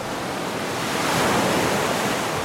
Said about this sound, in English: Just as when waves of the sea thunder onto the beaching shore, one wave following another as they're lashed into fury by the west wind. Waves rising first afar, then crashing and shattering, cresting onto jagged rocks